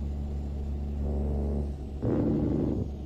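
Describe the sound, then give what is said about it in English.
A video game truck engine hums steadily, sags briefly as it shuts off from an engine malfunction, then kicks back in with a louder, rougher surge of rumbling revs before settling. No one speaks. “It just threw an engine malfunction thing and then shut off really quick and turned back on.”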